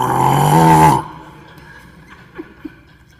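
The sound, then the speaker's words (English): A voice imitates one loud, drawn-out snore lasting about a second, rough and buzzing, followed by near silence with a couple of faint brief sounds. “He's time to go to bed, snoring.”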